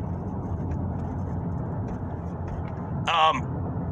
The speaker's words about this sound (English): sorry for the pause there. I had traffic all over my ass. I was trying to cross a road there. It was like wall-to-wall traffic.